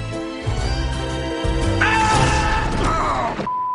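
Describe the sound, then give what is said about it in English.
A loud, chaotic crash of breaking glass as a body smashes through a plate glass window, with dull thuds and clattering debris over a few seconds, forceful. “The victim was killed by going through a plate glass window.”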